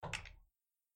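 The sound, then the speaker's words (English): A quick cluster of three or so sharp, fairly loud knocks as a woman raps on a wooden door, followed by silence. No one speaks. “And she just raps on the door.”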